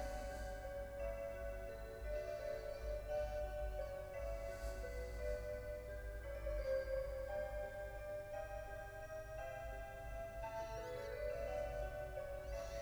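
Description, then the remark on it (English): A new clock ticks steadily, accompanied by sustained ringing, melodic tones and a low steady hum, with no one speaking. “It really is a beautiful clock, and the missus was really excited to have it.”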